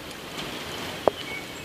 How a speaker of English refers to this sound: Rain and gale force winds overnight, but noisy.